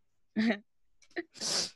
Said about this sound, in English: Bless you. Thank you.